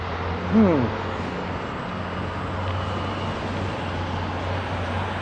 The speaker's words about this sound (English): And there's another fire truck.